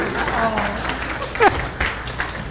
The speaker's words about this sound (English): Well, happy anniversary. This is our anniversary. We've been together, me as your pastor, for a year now. That got applause at the 9 o'clock.